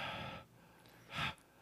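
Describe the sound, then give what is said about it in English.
A voice imitates heavy breathing: a long, loud breathy exhale, a short pause, then a second forceful huff, with no words. “No words. Heavy breathing in the background.”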